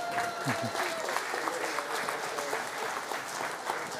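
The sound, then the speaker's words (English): An audience claps steadily for volunteers coming up on stage to try horseradish, a dense, sustained wash of applause, with a few cheers and murmuring voices mixed in throughout. “All right, let's give them a hand.”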